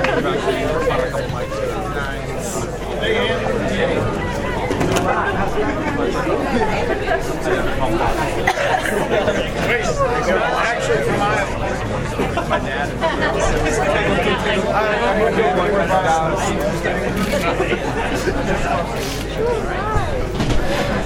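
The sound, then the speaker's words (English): A crowd of about 1,000 people at an Andrew Yang campaign event at the LULAC Club in Davenport chatters steadily throughout, many overlapping voices forming a dense, continuous babble with no single speaker standing out and no pauses. “That was Andrew Yang giving his presentation here to a crowd of about 1,000 people here at Lulac Club in Davenport.”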